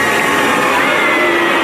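A large crowd of tennis fans boos loudly and without pause as Serena Williams approaches her father and sister after a championship match, a dense, sustained roar of low drawn-out voices with a droning, moaning pitch running through the whole stretch.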